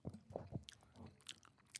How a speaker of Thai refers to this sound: กูเกลียดเสียงเคี้ยวมึงจริงเลย